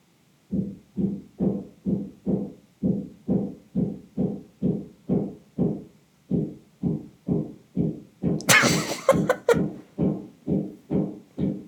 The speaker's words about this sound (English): I have people working on my house on my roof, so they're like taking off tiles and putting new ones on. So if you hear constant banging, that's what that is. So don't be alarmed, but it's annoying as fuck.